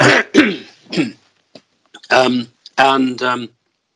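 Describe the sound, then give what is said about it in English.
A loud run of coughs and harsh throat clearing: three sharp hacking bursts, a brief pause with small clicks, then two longer rasping, voiced clearings of the throat. “Sorry, I'm going to cough again.”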